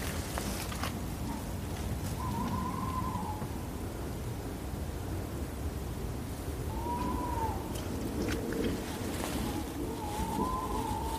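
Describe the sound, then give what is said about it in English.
Tawny owls, at least two including a male and a female, calling in woodland at night, with three smooth, mid-pitched hoots rising and falling at irregular intervals over a steady, hissing background noise. No one speaks. “There's definitely two. And a female. Gosh, a veritable chorus of them.”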